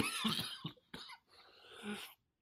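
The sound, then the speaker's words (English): A dry, unproductive cough in a few harsh, rasping bursts, with brief pauses between them and no talking. “Pretty dry, unproductive cough there”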